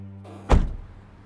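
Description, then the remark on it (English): A car door clunks once, loud, as someone steps out of a car with Jersey plates at a local bar, after a short rustle of movement over a low idling hum, with the thud ringing briefly before fading. “I step out of the car and pray that my jersey plates aren't visible.”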